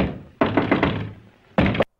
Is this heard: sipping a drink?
no